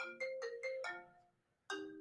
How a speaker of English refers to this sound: Now we're getting a phone call. I absolutely have to attend to.